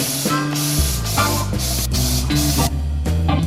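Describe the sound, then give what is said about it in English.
Several short hissing bursts of Mavis aerosol insecticide spray, aimed at a cockroach in a room, loud, repeating every half second or so over a steady low tonal background. “Ani, Mavis insecticide spray and ne quell.”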